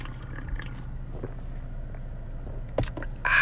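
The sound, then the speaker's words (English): A quiet first sip from a can of Bang Energy Drink: soft wet slurping and a small clink against a low background hum, ending in a brief louder rush of liquid. “Just got a Bang Energy Drink. Feeling good about it. Gonna take the first sip.”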